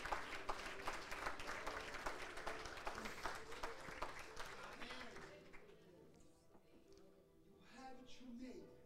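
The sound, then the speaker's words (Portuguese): An audience bursts into dense, steady applause to exalt God, holding strongly for several seconds, then fades out, leaving voices and a faint murmur as the clapping tapers off. “E se você crer, aplauda Ele, exalte a Ele.”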